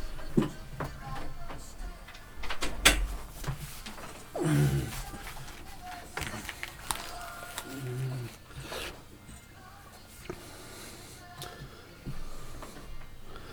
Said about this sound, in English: Right, let's do this then. Okay. Let's close that door.